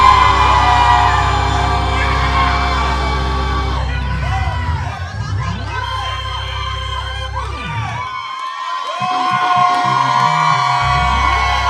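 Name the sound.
audience roaring and cheering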